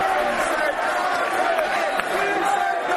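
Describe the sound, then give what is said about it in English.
A large stadium crowd applauds and cheers a player being substituted off, in a steady, loud, sustained roar of voices and clapping that fills the whole moment, with no single voice standing out. “Joey Cole comes off to a massive applause.”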